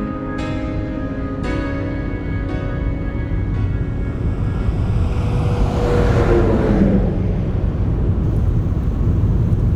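A car drives down to the water with a steady engine rumble and road noise throughout, brief tonal stabs early on, and a rising whoosh swelling past around the middle. No one speaks.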